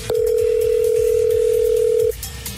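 A telephone ringing tone while a number is being called: one loud, steady, mid-pitched electronic tone held for about two seconds, then cut off abruptly, leaving only faint background noise. No one speaks.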